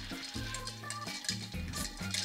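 A continuous swirl of ice rattling and clinking against glass as a clear cocktail is stirred for about 45 rotations before being strained into a chilled martini glass, with a steady low tone humming underneath. No one speaks.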